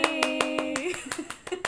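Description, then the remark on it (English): Rapid, steady hand clapping by someone whose hand is a little messed up, about nine sharp claps in under two seconds, with a sustained tonal voice or hum running underneath at the start and softer vocal sounds later. “Sorry, my hand's a little messed up. I can't clap right.”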